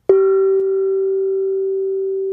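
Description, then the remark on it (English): A gong is struck once, sharply, then rings on with a steady, mid-pitched hum and bright overtones that barely fade; a light second knock follows half a second later. No one speaks. “Would you like to hit the gong”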